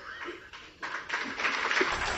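Applause in Parliament for the president of South Sudan, a dense crackle of many hands that starts fairly soft and swells louder partway through, then keeps going steadily to the end with no voices heard.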